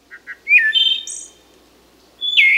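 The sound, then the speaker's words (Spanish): A migratory wood thrush sings clearly: two soft introductory notes, then a rich fluting phrase ending in a high trill, a pause, and another ringing phrase begins. “Pero hasta hace poco era imposible conocer la trayectoria precisa de una ave migratoria, como la de este zorzal del bosque.”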